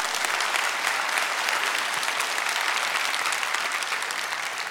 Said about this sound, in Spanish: Dale un aplauso, dale un aplauso.